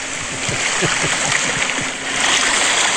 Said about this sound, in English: It's supposed to be beach waves. That was much more like river than beach waves. I was picturing trout.